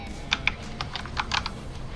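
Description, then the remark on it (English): Quick, irregular computer keyboard clicks tapping out a short burst of typing while looking something up, fairly crisp, with a few sharper keystrokes standing out over a low background hum. “I'm going to look it up really quick. Sorry if you hear clicking.”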